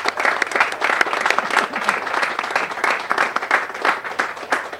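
A crowd applauds steadily, a dense, continuous patter of many hands clapping at a fairly loud, even level for several seconds.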